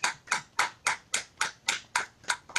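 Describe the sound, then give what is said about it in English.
An audience claps in steady unison, about ten crisp, even claps in a quick regular rhythm, with no voices over them, giving a hand clap to welcome a chaplain and mark her belated birthday. “Let's give her a hand clap, everybody.”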